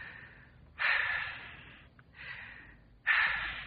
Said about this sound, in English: Take two deep breaths. Why, I'm breathing all right. Take them. Oh, all right.